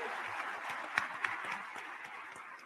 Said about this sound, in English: And I appreciate our candidates. Let's give them a round of applause for sticking to the 3 minutes.